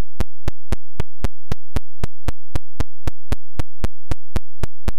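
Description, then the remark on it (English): Computer-generated running footsteps from a short BASIC sound-generation program: a steady stream of sharp, identical electronic clicks, about four per second, loud and evenly spaced with silence between them and no voices. “And they have a whole page worth of teeny little programs that are sound generation programs. So here's one for some running footsteps.”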